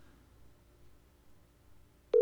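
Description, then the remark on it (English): A faint, hissy phone line gives way near the end to a sudden, loud, steady telephone tone, like the start of a busy signal, with no one speaking. “I am guessing that his phone may have died.”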